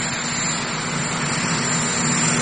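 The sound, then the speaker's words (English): The engine of Marine One, the helicopter, runs loud as a man gets off it, a steady roaring whine with a constant hum underneath and no change in pitch or level. No voices are heard. “He's getting off Marine One, the helicopter.”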